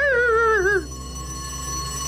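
A voice imitates a dog barking with one drawn-out, wavering, howl-like yelp, loud, lasting under a second before a faint steady hum remains.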